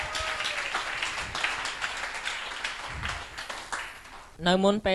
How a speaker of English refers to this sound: So give an applause for